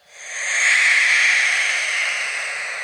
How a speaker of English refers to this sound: Okay, so for the audience, again, here's what a barn owl sounds like.